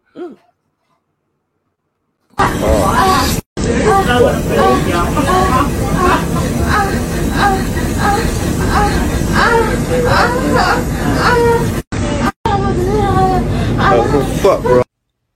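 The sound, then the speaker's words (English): Steady rumble of a moving subway car fills the space, with overlapping passenger voices chattering throughout, loud, cutting out abruptly near the end. “So she just gonna get handled on the subway like that by a ghost.”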